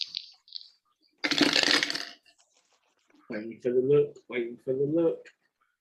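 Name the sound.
dice rolling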